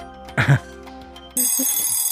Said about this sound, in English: And I didn't buzz you enough. I'm just going to give you a buzzer. Just for that. There we go.